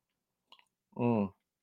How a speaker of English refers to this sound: Oh, you even got a slurp in there.